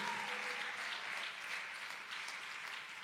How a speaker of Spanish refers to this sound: El fuerte aplauso al Señor con todo el corazón. Alabado sea su nombre.